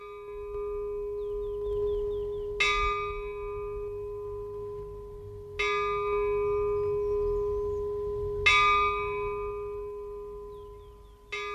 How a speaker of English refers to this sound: That is the bell of the chapel of Saint Bernadette in the Cité de Secours Saint-Pierre.